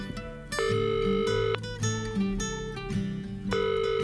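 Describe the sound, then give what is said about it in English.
A telephone ringback tone sounds on an outgoing call: two steady electronic rings about a second long, separated by a pause, over a bouncy backing of low musical notes. “Let's call her on the funny phone.”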